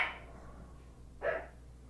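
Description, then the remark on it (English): A dog barks twice, short sharp yaps about a second apart, against a low steady hum with no one talking. “You said, why the dog's barking?”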